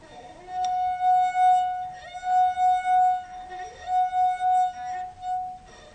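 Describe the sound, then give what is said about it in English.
A clear, sustained musical note rings from a water glass played by running a finger around its rim after half the water was drunk, holding one steady pitch for several seconds while its loudness swells and pulses rhythmically, with no talking. “And then what we asked you to do was to drink half of the water from the glass and play the note again.”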